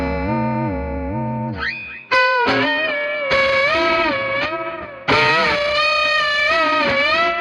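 A sustained electric guitar passes through a warbling, swirling modulation effect, its chords sweeping and wobbling with a metallic echo-like shimmer. Loud, close and alone, with no voices.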